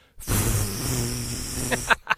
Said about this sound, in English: The lid features ornate engravings and what might be carved writing. But the writing can't be read. It's covered in centuries worth of dust. You blow off the dust.